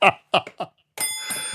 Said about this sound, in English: But there is the old school bill, a bell that actually needs some oiling, it seems to me. It's getting a little slow on the draw